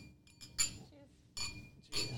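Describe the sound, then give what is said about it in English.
Glasses clink together three times in quick succession in a toast, bright ringing taps, with a faint murmur of voices underneath. “Cheers. Cheers, guys.”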